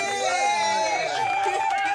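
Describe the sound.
A crowd cheers and whoops over a steady wash of applause, with many raised voices blending into a loud, continuous roar for about two seconds.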